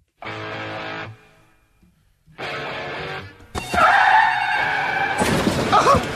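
Two short bursts of screeching tire skids, then a loud, sustained crunching crash with high squealing that ends in a burst of shattering glass. No voices.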